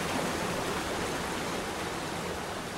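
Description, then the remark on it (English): Steady rain pours down in a dense, unbroken hiss that holds at an even, fairly loud level throughout, with no voices or other sounds. “Smiles watch over all of their faces, and it begins to rain.”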